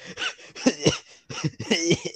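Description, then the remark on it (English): A string of strained, muffled coughs held back in the throat, four or so tight bursts in quick succession, moderately loud with no talking; a person trying to hold in a cough because coughing in public feels awkward. “I'm actually, it's so awkward coughing in public, so I try to hold in my cough, and yeah.”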